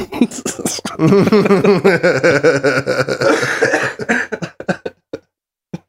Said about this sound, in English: Cough your head out.